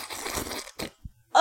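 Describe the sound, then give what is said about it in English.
A beer can cracks open with a crunchy, fizzing burst lasting about half a second, followed by a couple of short knocks and a brief vocal exclamation at the end. “Listen to the crack.”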